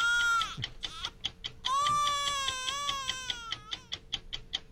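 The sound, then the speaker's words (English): A baby wails in two long, sustained cries with a wavering pitch, loud, while the steady, rapid ticking of a clock runs underneath throughout. No one speaks. “If you turn that clock off, that baby would go back to sleep.”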